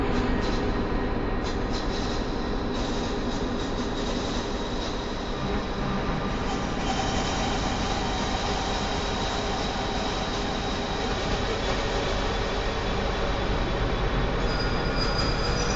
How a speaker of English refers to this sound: And then I can also up the feedback, which actually does have an effect. And you'll hear that effect as I turn up the feedback.